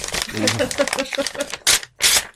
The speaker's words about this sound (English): I have in my hand a sealed envelope like Darren Brown, and I'm going to rip it open now.